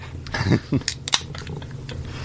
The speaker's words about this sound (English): opening my next beer.